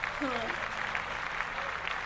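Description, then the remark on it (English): An audience claps steadily for a performance, a dense even wash of many hands that holds for the whole stretch, with a few voices and a brief whoop mixed in. “Let's clap that up for that performance.”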